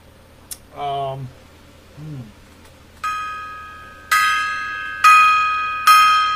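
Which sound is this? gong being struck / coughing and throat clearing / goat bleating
gong being struck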